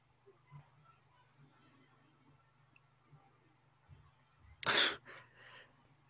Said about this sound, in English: Hey, they put the Wilhelm scream in there. Yeah. That's a nod to the original series, too.